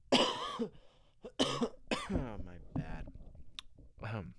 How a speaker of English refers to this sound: And by the way, I'm not coughing into the mic. I always turn my head, but I think it sounds like I'm coughing into the mic. No, I'm not. I'm turning away, but still pretty loud.